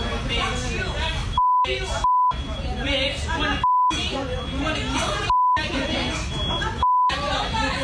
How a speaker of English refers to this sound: You didn't hear the beeps? The beeps at the very beginning. The interval between those beeps. I think that means those fries are way overdone.